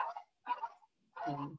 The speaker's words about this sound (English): Sorry, my dogs, they agree too. Yes. Let's see if they'll stop.